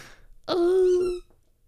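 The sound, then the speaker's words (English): A dog squeaks its squeaky toy: a single drawn-out, loud squeak holding a steady pitch for under a second before cutting off, with no voices around it. “Ah, see, he's squeaking the toy.”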